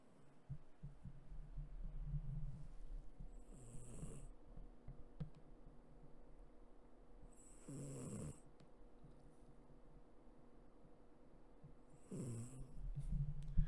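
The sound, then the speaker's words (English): Buddy, a deaf dog, snores softly in a steady rhythm, with three rasping, wheezy snore bursts spaced about four seconds apart over a quiet low hum. No one speaks. “Buddy's snoring.”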